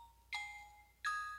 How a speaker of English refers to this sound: Oh, the phone ringing.